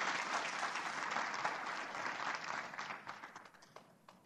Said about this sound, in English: Please give them a warm round of applause, and I'll turn it over to John.